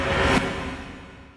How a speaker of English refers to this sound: And say hello to the Whoosh.